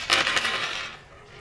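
A quick clatter of yellow dice tumbling across a hard tabletop: several sharp clicks in a rapid burst that settle within half a second, followed by a quiet background.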